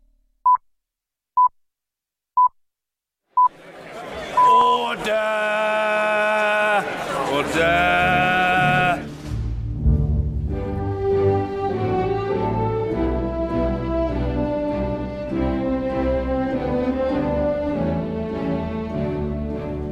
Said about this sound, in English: Well, you just heard the BBC on the hour pips, the roar of members of parliament, and a short flourish of land of hope and glory. All familiar sounds that make me think of England.